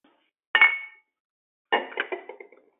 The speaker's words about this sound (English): Okay, who putting away dishes and pots and pans? Mute your phone now.